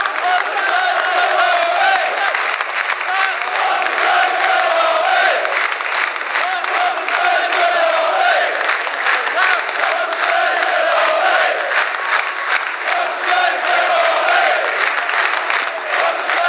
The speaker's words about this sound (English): Puts his arm out to the Leyton Orient faithful who are still cheering his name.